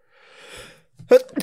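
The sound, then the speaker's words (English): A single sneeze: a soft, breathy intake of air builds for a moment, then a sharp, explosive burst follows, trailing off into a brief nasal exhale. “Bless you.”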